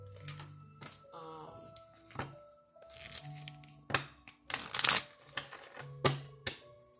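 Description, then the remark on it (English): A deck of jar cards being shuffled to get them ready: a series of quick, crisp riffling and flapping bursts of paper, some louder than others, over faint background tones. “I'm just shuffling these, getting them ready.”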